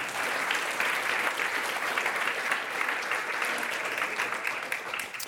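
A crowd claps steadily for several seconds, a dense, even wash of applause that stays loud throughout and tapers only slightly at the very end.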